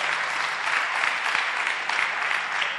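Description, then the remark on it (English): Steady applause from a church audience, many hands clapping in a dense, even wash of sound that holds at a constant loudness without pause. “Clap for me. Clap for me.”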